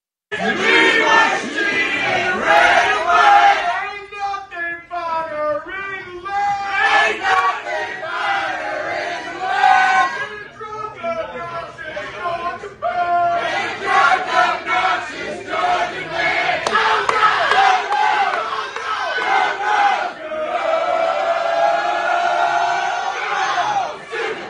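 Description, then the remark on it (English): A large crowd of Georgia Bulldog football fans bark and whoop together at St. Elmo's Steakhouse in loud, ragged rhythmic bursts, voices overlapping into a raucous chant that rises and falls for over twenty seconds without pause. “But listen to the hostile takeover of a bunch of Georgia Bulldog fans.”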